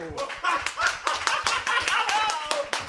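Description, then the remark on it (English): A crowd applauds as actor Cesar Romero, the Joker of the Batman TV show, is introduced, with dense overlapping claps forming a continuous, fairly loud wash of sound throughout, and a few faint voices and cheers mixed in. “Ladies and gentlemen, how about a big round of applause for the Joker himself, Mr.”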